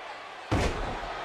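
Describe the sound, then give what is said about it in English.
A wrestler is slammed onto the mat by a suplex with one sudden, heavy slam during a match between Diamond Dallas Page and the Undertaker, breaking a quieter hum of background noise and leaving a rumbling wash of sound ringing on afterward. “Suplex.”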